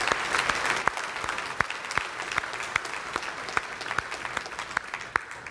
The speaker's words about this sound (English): He usually shows up second service, so I'll tell him a lot of you clapped.